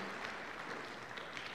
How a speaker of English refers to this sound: Happy Father's Day, dads. It's good to see you guys. Can we give them a little bit of applause of appreciation this morning?